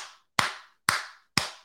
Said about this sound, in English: But if your kid walks around and starts clapping his hand in your ear like this.